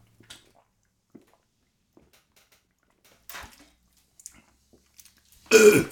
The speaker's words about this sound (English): I distinctly heard him opening a bottle of dark stimulation drink during the previous segment, but I didn't hear him taking a sip. He didn't take a sip at all. Well, I never said I did. I'm going to take a sip now, I can tell you though.